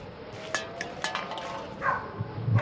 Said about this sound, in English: And what do we have over here? A dog, scrounging for scraps. The hurricane has even affected the animals, ladies and gentlemen.